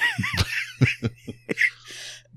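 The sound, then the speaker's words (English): A short run of harsh, breathy coughs, five or six quick bursts, trailing off into a raspy exhale over a low steady hum. “Well, that cough's still there.”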